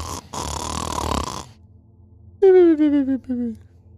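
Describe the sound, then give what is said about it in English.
A voice imitates the loud snoring of a man asleep in his hotel room: a long, rough, rasping snore, followed by a few short, throaty, falling grunts. “You go and pound on his door, you hear he's either snoring or sawing logs in his hotel room.”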